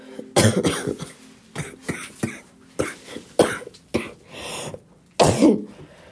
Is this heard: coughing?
yes